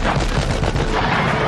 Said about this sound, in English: I absolutely love the gun sounds as he opens the door and McClane shoots him like 15 times or something.